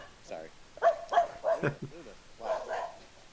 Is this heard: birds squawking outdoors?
no